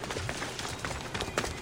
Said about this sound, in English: Wow, she runs away on her horse. Oh, horseback riding. I remember a lot of horseback riding in the first one.